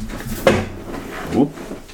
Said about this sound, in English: Crunchy. I don't like how rocky that chair is.